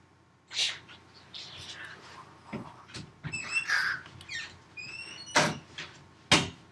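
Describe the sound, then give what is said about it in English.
A door being opened, with a few sharp knocks and clicks and some high, squeaky creaks in between, over a low background rumble. “You can get the door.”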